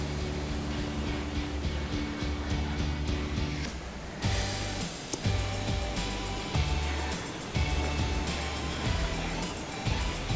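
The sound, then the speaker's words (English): A BikeErg's air-fan flywheel whirs steadily with a breathy whoosh as someone pedals nice and easy, pulsing in a regular rhythm with each pedal stroke and growing a bit louder partway through. No voices. “So we're just pedaling here. Nice and easy.”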